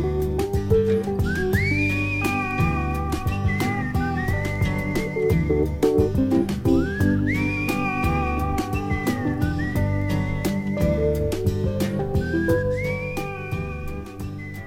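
A clear, sustained whistled melody rises and glides over a steady band backing, repeating its phrase several times at close range as the song plays out with no singing.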